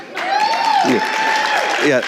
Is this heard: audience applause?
yes